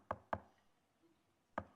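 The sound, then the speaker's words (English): Three sharp knocks on a door: two in quick succession, then a pause of over a second before a single final knock. The knocks are loud, with no voices. “You guys get the thing, and they're out there at the door.”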